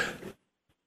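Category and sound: human body sound, cough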